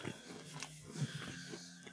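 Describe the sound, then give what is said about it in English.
Chewing of a crunchy Heath toffee candy bar, with wet, sticky mouth sounds and scattered crunches running steadily for a couple of seconds, loud. “Take another mic. Sweet. Get in there.”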